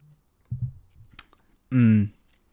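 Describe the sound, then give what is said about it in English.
Someone takes a quick drink: a couple of soft gulping sounds and a small click, then a short, loud, satisfied voiced sigh. “Let me get a little sip right here.”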